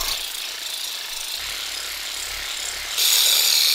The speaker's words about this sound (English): What is essentially a beefed up handheld massager is doing some serious work to your muscles. Take a listen to it in action. Actually, that's a jackhammer. Here's the actual Theragun.